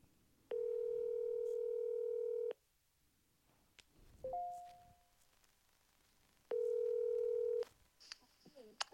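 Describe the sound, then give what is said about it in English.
A telephone ringback tone on an outgoing call to a friend who is in her office: two long, steady electronic buzzes separated by a pause, with a short blip in between and faint background noise. “Let me call her.”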